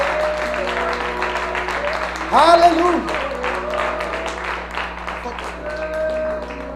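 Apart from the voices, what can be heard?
audience applause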